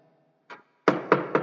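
A soft tap, then three firm, evenly spaced knocks on a wooden door, resonant, with no voices.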